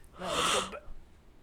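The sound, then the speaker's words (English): A single short, breathy yawn with a voiced, drawn-out quality, fairly loud, then quiet background with no talking. “I know it's a little extra work, but can we get a yawn counter?”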